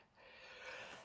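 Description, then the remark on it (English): A single sneeze caused by seasonal allergies, a breathy, noisy burst that swells and then fades over about a second, with no talking. “Excuse me. Bless you.”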